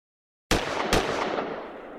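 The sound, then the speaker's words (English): In a sketch presented as highlights of the Bond movie Skyfall, two loud, sharp gunshot sound effects crack in quick succession after a moment of silence, the second following about half a second after the first, with a long noisy tail slowly fading afterward. “You have killed him.”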